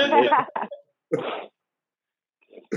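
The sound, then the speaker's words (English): A few short, harsh coughs from a woman, coming in three or four separate bursts with brief silences between them. “It's making her cough a little, drinking all that bleach.”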